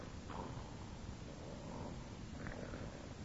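man snoring loudly

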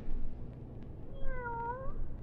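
cat meowing

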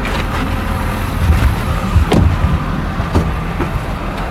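truck passing on road

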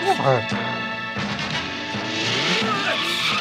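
car

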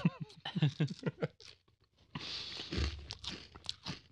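loud crunching

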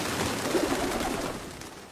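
pigeons cooing

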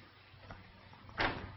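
door opening and closing

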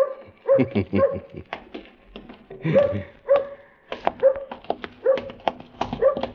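dog barking and whimpering

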